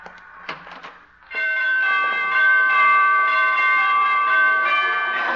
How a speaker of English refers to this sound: She must have borrowed those door chimes from ….